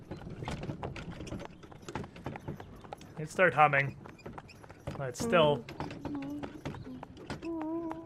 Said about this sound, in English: kind of almost an awkward silence with nothing but the sounds of the horses and the carriage behind you.